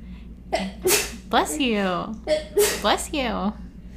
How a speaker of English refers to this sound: Bless you. Oh my God, you know what? I got Febreze and I spray Febreze and I think it may be toxic. Is that why you're sneezing? I don't think so.